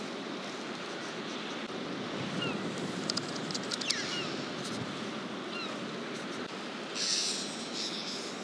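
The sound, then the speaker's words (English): A steady wash of bright green sea waves breaking on a shore of big dark rocks, little coves and some sand, with wind gusting across the microphone and a few faint, high bird calls. No one speaks. “With this really quite bright green sea.”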